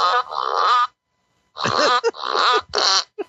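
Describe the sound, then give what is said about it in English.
A fart machine lets out a long buzzy raspberry, then after a pause a run of several shorter sputtering bursts with wobbling pitch, loud and with no talking. “Yeah, I was going to say we ended with the fart machine last week.”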